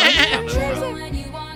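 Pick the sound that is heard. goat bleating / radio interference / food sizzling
goat bleating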